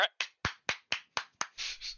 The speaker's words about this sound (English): Why are you clapping? I'm just happy. We're traveling at a good pace.